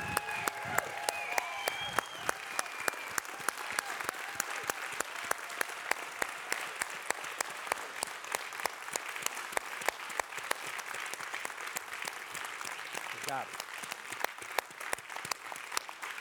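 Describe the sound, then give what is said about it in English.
A church audience claps steadily for about sixteen seconds during a service, dense overlapping handclaps with sharp individual cracks, and a few faint voices call out within the applause. “Let's show these people what a mountain applause looks like, you guys.”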